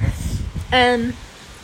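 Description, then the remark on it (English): Strong, gusty wind rumbles and rustles outdoors, buffeting the microphone, while a voice briefly cuts in with a short drawn-out vocal sound partway through. “Whoa, it's actually got really windy where I am right now recording.”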